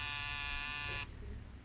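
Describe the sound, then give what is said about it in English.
A door buzzer sounds one steady, harsh electric buzz with a bright, rasping tone, holding for about a second before cutting off abruptly, leaving a low background rumble. “There's the door buzzing.”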